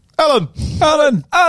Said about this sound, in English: That's my kids yelling.